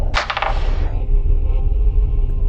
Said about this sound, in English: I'm done with these digital dice, I swear. Roll a real die. You're gonna complain about the digital system that we use so much. Go ahead, roll a real one.